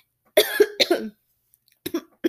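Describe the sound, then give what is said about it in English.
A harsh fit of choking coughs from someone choking on saliva: four quick sputtering bursts in a row, a short pause, then two or three more rough coughs, with no talking. “I promise I coughed and I choked on saliva.”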